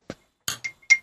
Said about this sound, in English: I can chink glasses with you, but I've got Ribena. That's all right. I know you don't drink, so that's just as valid. So hold on, we'll cheers, chaps.